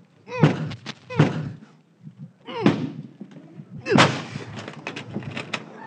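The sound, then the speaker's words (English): Heavy, booming impacts strike a door four times in uneven succession, each a loud thud with rattling and splintering noise, as if someone is battering it to force it open. “If you don't open that door, I'm going to come in and get you anyhow.”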